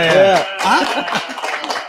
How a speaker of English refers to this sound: How y'all doing today? Yeah. Yeah. Crowd noise.